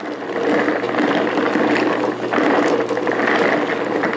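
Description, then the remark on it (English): A rock tumbler grinds on steadily, stones rattling and clattering with silicon carbide grit and water inside a rotating barrel, a constant harsh, gritty churn and a low motor hum beneath, no voices. “And the rocks churn in that and the water for a few weeks, and they come out smoothed and shiny. But it's not easy on the ears.”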